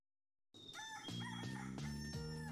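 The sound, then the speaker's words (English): A rooster crows loudly, a long drawn-out cock-a-doodle-doo with strained, harmonic-rich calls, after a brief moment of silence. “cue that rooster.”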